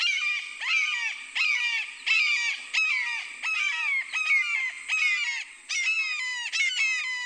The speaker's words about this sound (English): Bird calls are courtesy of Jeff Keller.